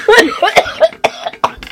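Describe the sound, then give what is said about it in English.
A few sharp coughs, roughly three bursts in quick succession, with some brief voiced sounds between them. “You coughing? No, I cough.”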